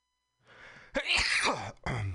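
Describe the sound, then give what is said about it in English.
A loud sneeze: a soft breathy intake builds up, then an explosive burst, followed by a brief pause and a second noisy gust of breath. “Bless you.”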